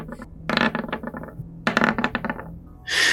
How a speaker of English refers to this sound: A 10 on the dice would have been quite nice, but it looks like you've all rolled very low, except for Jabert's new fellow.